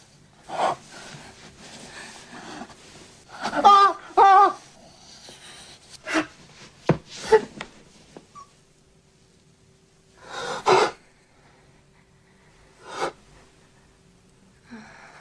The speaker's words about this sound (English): I'm sure there must be some Foley artists who are doing all that. He really does whimper like a dog, like a sharp, whimpering dog.